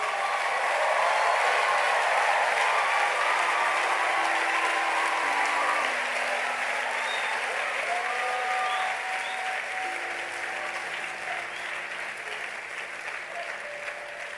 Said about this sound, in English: Come on, clap for Jesus.